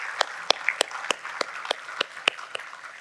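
A church audience in Olathe gives another round of applause, though thinly: about ten sharp, scattered handclaps ring out over roughly three seconds at moderate volume, with no talking.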